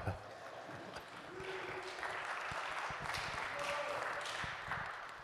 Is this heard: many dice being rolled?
no